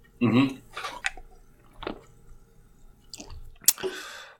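Someone chugs a can of lime LaCroix sparkling water: a run of wet, irregular gulps and swallowing sounds with soft clicks, ending in a sharp fizzy burst and a breathy exhale.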